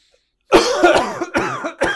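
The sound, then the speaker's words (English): A loud fit of harsh coughing: several rough bursts in quick succession, one after another with brief gaps, and no talking. “And let's cough another log onto the funeral pyre.”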